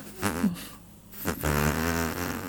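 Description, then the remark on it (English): A loud, buzzy fart noise sputters in two bursts, a short wobbly one followed by a longer, steadier rasp after a brief pause, prominent with no talking over it. “stopped farting yet? No. He's in the background.”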